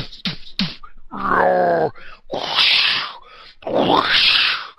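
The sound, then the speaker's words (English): A voice imitates sound effects of a fight at the end: two quick sharp smacks, a drawn-out pitched groan, then two loud, rough, breathy grunting bursts, with brief pauses between them. “Instead of having us, that's the sound effects of the fight at the end.”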